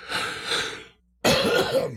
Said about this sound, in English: Pardon me. I don't know where the cough button is here in the studio.